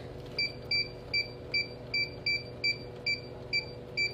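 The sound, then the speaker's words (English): A time clock beeps about ten times as someone clocks out for the last time at their job, in a steady, quick rhythm, each short high-pitched bleep evenly spaced over a low, constant background hum. No one speaks. “I'm about to clock out for the last time at my job, and there's a reason for that.”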